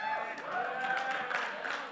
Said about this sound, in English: Now that you've clapped, the reason I would have chosen this one is back home, I've been known to preach the everlasting gospel.